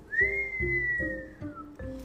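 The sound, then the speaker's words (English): A clear human whistle holds one steady tone for over a second, then drifts slightly downward and fades, with a short second whistle at the end over a low, pulsing background. “Then he gave a low, distinct whistle.”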